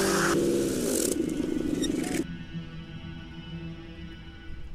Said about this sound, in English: Jake stomps his foot down onto the gas pedal and feels the power of the engine open up under him